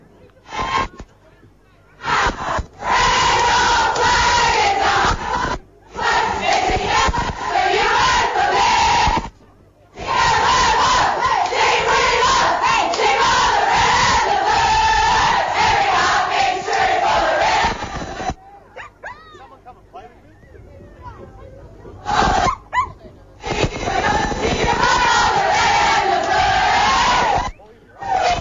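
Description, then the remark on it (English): The Diamond Creek girls' team, winners today by five points, loudly sings their victory club song in the rooms. Voices shout and chant in raucous unison with brief pauses between bursts, followed by cheering. “Here's the Diamond Creek girls about to sing the song.”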